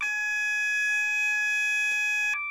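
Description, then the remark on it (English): A steady, loud electronic alarm tone from a train cab's automatic warning system, holding a piercing multi-harmonic pitch for over two seconds before abruptly shifting to a lower tone at the end. “So that's the automatic warning system you can hear there.”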